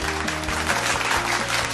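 Sustained applause played on the Channel Mom radio show as applause for all mothers, a dense, even wash of clapping that holds steady for about two seconds, with a low musical tone running underneath.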